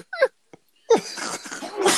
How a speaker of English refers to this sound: Wait, is that a sneeze or? Oh my god. I don't even know what that was. But I had to just clear my airways and my knees. I'm sorry about that.